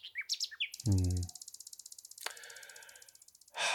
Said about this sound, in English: And that is, will the next generation be able to hear the Nightingales?